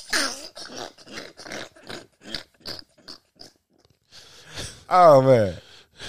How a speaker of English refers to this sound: You gotta be over here breathing in the microphone like I'm Jason stalking somebody